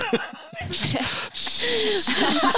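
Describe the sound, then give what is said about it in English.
A kettle, of the kind that gives a high-pitched squeal, hisses loudly with rushing steam, starting after a brief moment of faint background noise, cutting out for an instant, then resuming as a steady, continuous hiss. “Kettle, one of those like ones that does the high-pitched squeal.”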